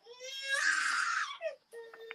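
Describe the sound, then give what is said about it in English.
A baby girl screams and cries, starting with a whiny rising note that swells into a loud, shrill, sustained wail, then breaks into shorter sobbing whimpers. “My granddaughter screams up a storm.”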